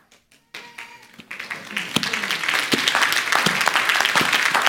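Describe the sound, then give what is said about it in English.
An audience breaks into applause, starting with a few scattered claps and quickly swelling into steady, dense clapping that builds louder over several seconds. “I know you don't have to clap, but just get it.”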